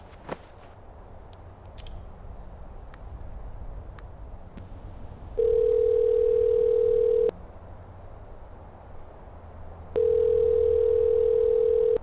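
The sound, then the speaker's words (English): Two long, steady telephone ringing tones sound through an earpiece as a call is placed from Brighton Rock, a high lookout near a highway, each about two seconds with a pause between, over faint background hum and a few small clicks at the start. “it made the perfect spot to call Jean by phone”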